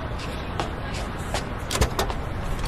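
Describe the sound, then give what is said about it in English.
A limousine's engine rumbles steadily as it pulls up, with a few sharp clicks and a car door thudding shut near the end. “What an amazing car! A limousine?”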